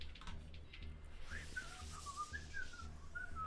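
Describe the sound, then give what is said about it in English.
A man whistles a short, wandering melody of sliding notes, moderately loud, as he walks away, over a soft, steady low-pitched rhythmic pulse in the background. “He turns around and walks away, and he flicks that coin in the air again and pockets it, starts whistling.”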